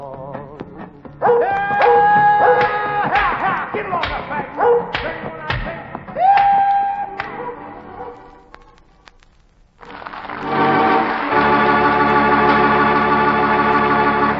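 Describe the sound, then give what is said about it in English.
Lassie, the famous dog of The Lassie Show, barks and yips in a quick series of sharp calls, ending with a drawn-out whine, before a steady, dense wash of sound takes over. “Lassie, the world's most famous dog, and Red Heart, America's favorite dog food, team up for The Lassie Show.”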